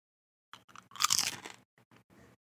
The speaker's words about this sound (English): And I have a bowl of chips on my desk, and I want to try something. I want to see if you can guess the flavor from the crunch.